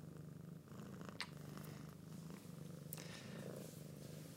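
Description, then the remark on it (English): A cat named Lola purrs steadily, a low continuous rumble pulsing in a regular rhythm, with a couple of faint clicks and shuffles in the background and no one speaking. “But she's a funny cat.”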